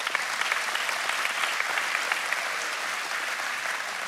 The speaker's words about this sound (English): That's worth a hand clap. Come on, give it up.